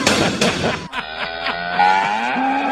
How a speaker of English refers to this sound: That's a good cow right there. Yeah. I really enjoyed that. Beautiful. The cow's getting a little beefier lately. It's nice to see him fatten up.